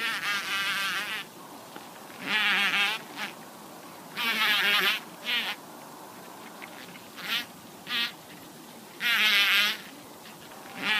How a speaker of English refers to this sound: The bumblebee unhinges their wings from their flight muscles and moves those muscles extremely rapidly to make the vibrating motion. Here is the familiar sound that bumblebees make as they are vibrating.